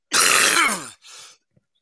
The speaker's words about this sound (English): Excuse me, I keep coughing. I got a cold.